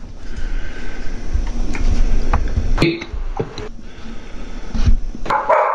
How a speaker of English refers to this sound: Hey, I interrupt this for 1 second here. I have a dog going crazy. Give me 1 second, please.